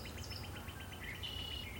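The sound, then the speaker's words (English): Birds chirp in a quick, steady series of short high notes, with a thin whistled call rising over them. The sound is soft and outdoorsy, over a faint low background hum, with no talking. “We can hear them chirp, chirp, chirping away.”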